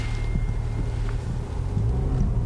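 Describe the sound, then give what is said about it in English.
A car with a DSG gearbox pulls away on the road in sport mode, its engine a low, steady droning rumble whose pitch climbs slightly as it accelerates, accompanied by a wash of wind and road noise. No one speaks. “So, without further ado, let's get ourselves on the road. Straight into sport mode, and let's be having you then.”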